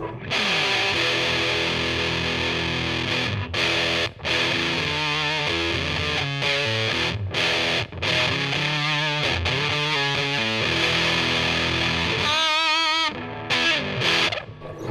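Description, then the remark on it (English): Heavily fuzzed electric guitar, played through a Big Muff fuzz pedal on the single-coil bridge pickup of a Telecaster, plays thick, saturated chords and sustained notes with a wobbling, warbly texture, loud and alone with no talking, broken by a few brief cutoffs. “Big Muff is really cool because it's got that sort of real fuzzy, sort of crazy overdrive.”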